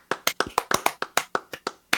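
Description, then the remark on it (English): A quick series of about a dozen sharp, crisp hand claps in an uneven, brisk rhythm with no talking underneath, clapping out the end of a show. “So everybody, that's a show. Let's clap it out.”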